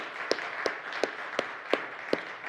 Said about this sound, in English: Matter of fact, if you can, would you give them a round of applause again for how...